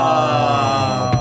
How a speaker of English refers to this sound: Party foul. He told everybody else to turn their phones off, and then he didn't.